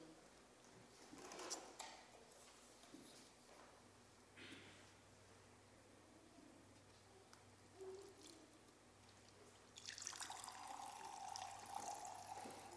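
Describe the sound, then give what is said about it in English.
Quiet room tone with faint clicks, then a volunteer pours old water steadily into a leaking container for the last few seconds, filling it halfway, a bright splashing rush with a rising filling tone. Nobody speaks. “poured in water halfway, but it's leaking.”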